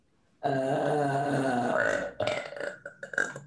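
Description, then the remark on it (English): A long, loud, drawn-out burp rumbles continuously for about a second and a half, then breaks into a few shorter, sputtering bursts before trailing off. Prominent, with no talking. “That burp had a whole like cinematic universe to it.”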